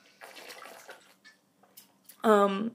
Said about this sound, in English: I'm going to have some water now. I'm just going to move away from the mic.